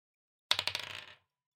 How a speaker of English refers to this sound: I want you to roll a dice.